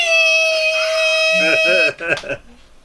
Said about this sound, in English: Can you just beep that? People don't even know his middle name.